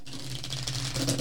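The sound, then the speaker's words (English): Tarot cards being shuffled: soft, continuous papery riffling and flicking, with no talking and a steady low hum underneath. “I don't know if you can hear me shuffling, but it's probably just...”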